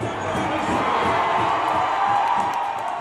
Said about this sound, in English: That was some crowd noise from an American football match between the Kansas City Chiefs and the Chicago Bears.